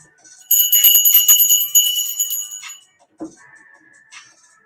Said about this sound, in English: Mic check, 1, 2, 1, 2. Give me some bells if you can hear me.